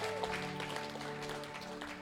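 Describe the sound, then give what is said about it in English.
An audience applauds the band steadily, a dense wash of overlapping claps held at an even level for about two seconds, with a sustained musical tone lingering underneath. “Hey, why don't you give the band a round of applause and grab a seat.”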